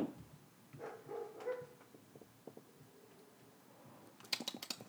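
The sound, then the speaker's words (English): A few faint barks from dogs outside sound in the first half of the quiet recording, followed near the end by a burst of sharp clicking like typing. “Don't worry about those dogs, Moose.”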